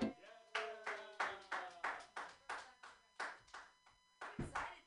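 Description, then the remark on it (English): Steady rhythmic clapping, about three sharp claps per second, loud and even, with a faint tonal hum at the start and no talking. “Okay, clap for me.”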